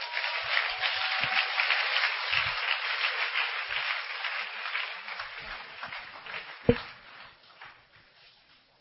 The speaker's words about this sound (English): Hey! Clap for Jesus.